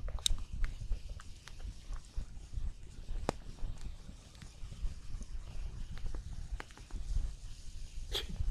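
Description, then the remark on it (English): A roaring campfire, cooking the water out of something wet, crackles with sharp, irregular pops and snaps, some louder than others, over a steady low rumble of burning. No one speaks. “Shh, just listen to the fire crackle.”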